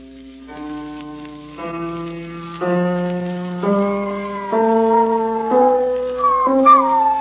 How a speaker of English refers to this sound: One of my daughters was taking a lesson while the wife and I listened. I remember the wife's dog, big, fat spaniel it was. He was howling along at the piano the way he always did.